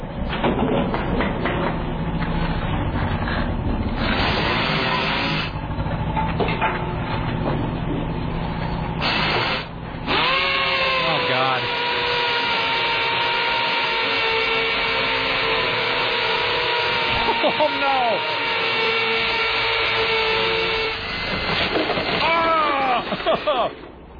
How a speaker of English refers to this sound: I'm going to watch this PSA about safety with a DeWalt power drill.